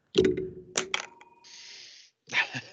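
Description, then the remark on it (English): A thrown pen clatters against a bell: a few sharp metallic knocks, then a thin bell tone rings on faintly before a final rattling clunk. “Yeah, I threw my pen and it hit it.”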